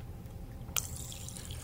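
A short, wet squirt of water lands in a mouth, a single quick splashy burst followed by a faint lingering trickle against a low rumble. No one speaks.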